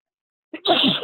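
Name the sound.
sneeze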